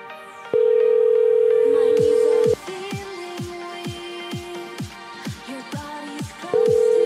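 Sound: outgoing phone call ringing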